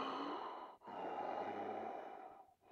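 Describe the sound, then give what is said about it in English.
Heavy, labored breathing from a silent caller on the phone line to a late-night radio call-in show, with two long noisy breaths separated by a brief pause, loud with a thin, band-limited telephone quality. No one speaks. “It was heavy and sounded as though whoever was on the other line was either sick and having trouble breathing or snoring.”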